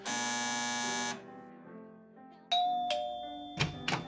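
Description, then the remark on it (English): A harsh, raspy door buzzer drones for about a second, followed by softer low tones and then bright ringing chime notes with a few sharp clanks, with no talking. “Was that a buzz?”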